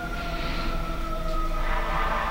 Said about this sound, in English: As the sirens go off in the distance. Here we go again.